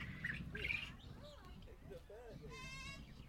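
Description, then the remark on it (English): A zebra finch in a tree gives a few quick, nasal chirps and a longer buzzy call, over a low murmur of outdoor background noise and faint voices. “I think there's a zebra finch that we just took a picture of in the tree.”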